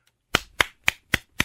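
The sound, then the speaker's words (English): Five sharp hand claps in a steady, fairly even rhythm, each a crisp bright slap with nothing else heard between them. “You're now not allowed to clap anymore.”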